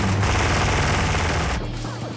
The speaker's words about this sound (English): Those guns on the side of Tyrese, Machine Gun Joe's Dodge Ram, are actually from a helicopter. Yeah, they're called Vulcan cannons. They're usually mounted on Black Hawk helicopter gunships.